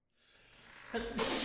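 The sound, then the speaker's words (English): A single sneeze: a breathy, gradually rising inhale builds for most of a second, then breaks into a loud, explosive, hissy burst at the end. No one speaks. “I gotta sneeze.”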